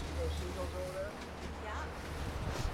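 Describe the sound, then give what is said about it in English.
A steady low rumble of a boat motor on the Pacific Ocean, off the northern coast of Graham Island, Haida Gwaii, near the Masset Reserve, runs beneath gusty wind buffeting the microphone on open water, with faint, indistinct voices in the background. “I'm on a boat on the Pacific Ocean off the northern coast of Haida Gwaii's Graham Island near the Masset Reserve, one of two main Haida communities.”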